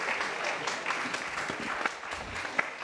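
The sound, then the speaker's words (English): A crowd at the AROYA Office Hours Live event in Sacktown on a Tuesday applauds the host, Indoor Sun Hydro, a dense wash of many hands clapping at moderate volume with a few sharper claps standing out, without any talking. “So a round of applause for Indoor Sun Hydro for hosting us.”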